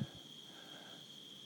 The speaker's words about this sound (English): I don't know if y'all can hear the crickets and the tree frogs.